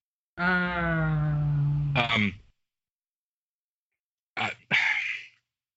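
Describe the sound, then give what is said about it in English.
A man makes a long, voiced throat-clearing rasp, then after a pause two quick, harsh coughs in succession, fairly loud with no talking. “And you made him choke.”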